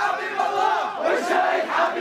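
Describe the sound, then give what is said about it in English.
A large crowd of young protesters, mostly young men holding signs against corruption, shouting and screaming together at a governor in a sustained, chaotic roar, loud, with overlapping yells of 'you're all thieves' rising and falling throughout. “These protesters, they're mostly young men, and they're holding signs saying no to corruption, and they're screaming, you're all thieves.”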